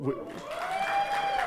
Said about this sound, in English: And this is the part where you clap and